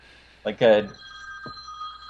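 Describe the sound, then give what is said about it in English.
A phone rings with a steady, high electronic tone that holds for over a second, following a brief burst of a voice at the start. “There's my phone.”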